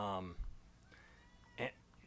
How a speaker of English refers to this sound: Wow. That's just going to be a lot of meowing on this podcast. Could you hear that? Mm-hmm. I know. I was going to say, I know the microphone's picking it up.